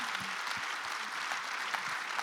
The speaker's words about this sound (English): And they did such a great job. So guys, let's give them a round of applause. We love our coaches here at Region.